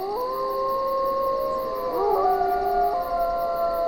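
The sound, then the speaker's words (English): A pack of wolves in Yellowstone National Park howls together in long, overlapping sustained tones that slide and waver in pitch, forming a steady chorus with no break across the whole stretch. “You've got packs of wolves which howl.”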